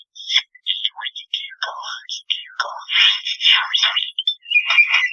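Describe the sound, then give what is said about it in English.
A bird, played from a computer, calls almost nonstop in a rapid, varied string of high chirps, whistles and raspy warbling notes, fairly loud and heard alone without any talking; the bird is making video game noises it learned. “Listeners at home, this is a bird. This is a bird making...”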